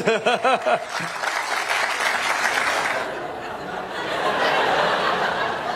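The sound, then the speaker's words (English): A short vocal whoop or laugh opens, then an audience at a Pete Buttigieg campaign event, after being asked to cheer, breaks into steady applause and scattered chuckles, dipping briefly midway before swelling again to a full, sustained round of clapping. “Firstly, you should never have to ask an audience to cheer for you, like for something you've said.”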